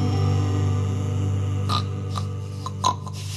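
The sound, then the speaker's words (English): A few short, snorting pig-like grunts, probably a voice imitating a pig, pop up in the second half over a steady sustained musical drone, irregularly spaced. “Pig goes.”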